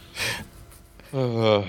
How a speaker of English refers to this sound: I was shocked when I saw this. I said, gasp audibly. Audible gasp.